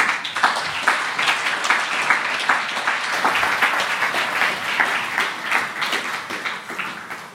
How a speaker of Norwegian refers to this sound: Giv hende en varm applaus.